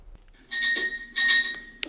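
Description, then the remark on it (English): A doorbell rings with two bright, ringing chimes in quick succession, like a ding-dong, fairly loud, followed by a faint click; no one speaks. “Somebody rings the doorbell.”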